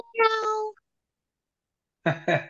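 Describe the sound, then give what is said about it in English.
A voice imitates a cat's meow, one drawn-out mew, then after a pause of silence two more quick meow-like calls close together, loud. “Me, cat lady, do your thing.”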